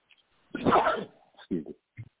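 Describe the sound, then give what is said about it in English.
A single loud sneeze bursts out with a breathy rush, followed by a couple of short, throaty sniffles or grunts. “When you're sneezing, that it's letting you know.”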